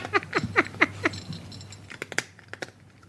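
A cat crunches hard dry kibble from a bowl in quick, irregular bursts of sharp cracking bites, with a low steady hum underneath; the chewing thins into scattered clicks toward the end, and its little name tag hits the bowl.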